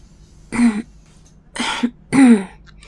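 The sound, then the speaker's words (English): Someone on a bus softly clears their throat at the driver in three short, breathy bursts, with brief pauses between them and no talking. “I stop by the driver and quietly clear my throat.”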